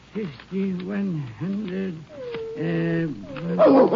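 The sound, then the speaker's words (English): A nervous dog named Rags growls and whines in a run of uneasy bursts, rising into sharper barks toward the end, with no one speaking over it, in Irwin County, Texas, at night while its owner counts a large sum of money. “As he was counting, his dog Rags appeared to be nervous.”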